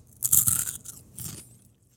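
A loud crunch of someone biting into a Takis rolled tortilla chip, with a burst of crackling followed by a second shorter crunch as they chew.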